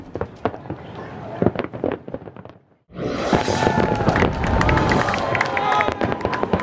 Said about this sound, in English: A sneak peek at the best way to see fireworks and an epic concert.